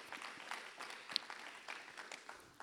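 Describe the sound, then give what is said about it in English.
An audience claps steadily, a dense patter of many hands with no clear rhythm. The clapping is fairly quiet, with no one speaking over it. “Yes, that's a great time to clap.”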